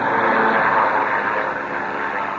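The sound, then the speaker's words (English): An airplane engine drones steadily overhead, a loud, continuous rumbling roar with a slight rise and fall in intensity and no voices. “That must be one of Sharp's planes.”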